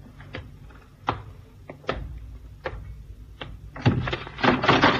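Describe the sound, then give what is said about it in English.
A series of wooden thumps and knocks, spaced unevenly, then a louder, busier clatter as a trap door in the corner bangs shut after someone disappears down it. No one speaks. “As we came under the bridge, somebody did a disappearing act down the trap door.”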